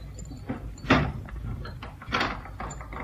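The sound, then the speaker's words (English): A door is pushed shut with a solid thud, then after a short pause a second sharp clack follows as it is locked from the inside, with a faint rustle of movement in between. “Lock the door again, will you, Cannon? You'll lock it from the inside?”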